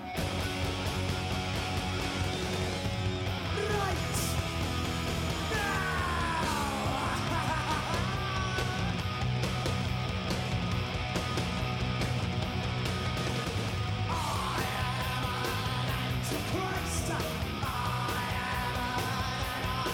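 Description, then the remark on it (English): A loud, dense punk rock track plays without pause, with raw yelled vocals riding over distorted guitars and pounding drums for the whole stretch. “the most famous one is …, where it's basically the … kind of screaming, I am an anarchist, I am an antichrist”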